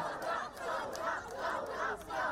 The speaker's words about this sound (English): The response from the protesters was Thawra, Arabic for revolution.